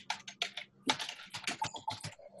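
Rapid, irregular clicking of keys on a computer keyboard as someone accesses error logs on a computer, a steady flurry of crisp taps with brief pauses, no voices.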